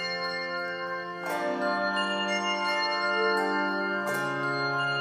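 The Archdiocesan Handbell Choir rings a melody in an arrangement, clear sustained bell tones overlapping and ringing out, with new strikes entering around the middle and again near the end, steady in volume.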